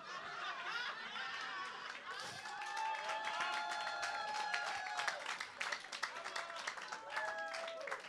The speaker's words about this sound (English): Thank you for clapping, brother.